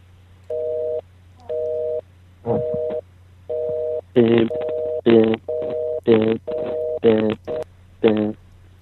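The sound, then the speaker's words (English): A cell phone number is dialed and gives a steady, evenly spaced busy signal, its beeps repeating about twice a second, interrupted by brighter, louder electronic tone bursts, clear with a faint hum underneath. “That's supposed to be Candy Smith's phone number, but her cell phone. Her cell phone's busy?”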